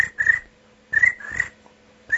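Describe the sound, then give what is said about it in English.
Crickets chirp in short, trilling bursts, about four of them spaced unevenly, clear against an otherwise quiet, empty background with no voices. “Crickets.”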